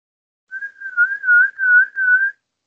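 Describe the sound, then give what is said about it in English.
A person whistles one steady, fairly low note for about two seconds to get someone's attention, wavering slightly and pulsing in loudness, with nothing else in the background. “…, could you give me a whistle, a real life whistle?”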